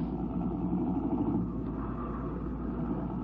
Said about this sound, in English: He threw the car into gear, and then they were worming their way through the 8:30 traffic.